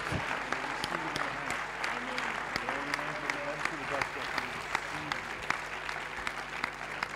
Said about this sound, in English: Okay, come on, let's give them a clap as they stand and take up that role.